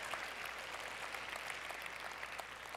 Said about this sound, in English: You can clap for that.